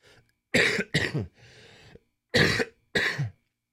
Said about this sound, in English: Sorry, excuse me. I keep on having these coughing spells, but we're gonna keep on fighting through.